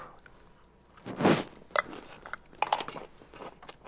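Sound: biting and chewing food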